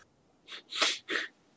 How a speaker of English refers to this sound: Hold on, I have to cough.